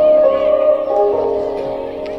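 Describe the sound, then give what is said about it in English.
Japanese lo-fi hip-hop music from a 40-minute samurai-themed mix video plays steadily, a mellow plucked melodic line with sustained harmonic tones at an even, moderate loudness, with no voices. “The very first thing that comes up is Samurai Japanese Lo-Fi Hip-Hop Mix.”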